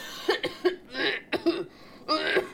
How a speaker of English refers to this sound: Then … starts coughing loudly again.